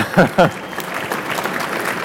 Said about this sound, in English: Oh, there we go. See, I knew I had an applause line in there.